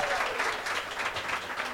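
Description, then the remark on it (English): A crowd applauds to show how many of them are attending Comic-Con this weekend, in a steady, dense wash of clapping, many hands overlapping into a continuous hiss-like texture that holds at an even, moderate level throughout. “By round of applause, how many people are actually attending Comic-Con this weekend?”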